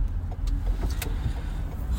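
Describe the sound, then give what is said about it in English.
A car rolls slowly into a driveway at a compound, its engine a steady low rumble, with a few sharp clicks and crunches over it and no one talking. “pulling into the Mulligan compound”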